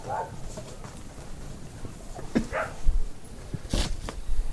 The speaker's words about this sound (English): Sorry. So for doggy barking.